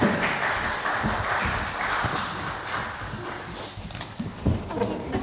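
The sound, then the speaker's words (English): A church audience claps in a steady round of applause for children, a dense patter of hand claps holding an even level for about five seconds, with a few sharper, louder claps near the end. “You can put them down now and go back and sit down, and I think they'll give you a round of applause.”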